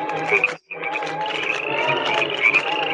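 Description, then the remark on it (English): A dense, loud chorus of many frogs croaking at once as frogs rain down from the sky, layered and continuous, with only a brief pause near the start before the croaking swells back in. No one speaks. “Whoa, dude, it's raining frogs.”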